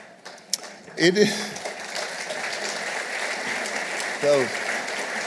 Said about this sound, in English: Those are the 70-year-olds applauding.